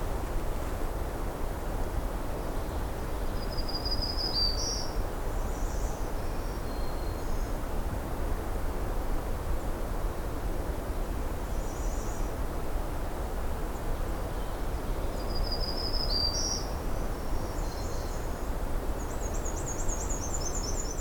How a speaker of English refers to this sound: There's the black and white warbler with the thin trill.